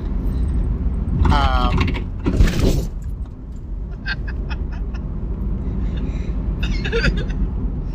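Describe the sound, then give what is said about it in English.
A loose front wheel rattles and clunks around in the back of a moving vehicle, giving irregular knocks and jangles over a steady low road rumble, with a louder burst of clattering early on. “As far as the front wheel, you can probably hear it bouncing around in the back of this this recording. It's still going on.”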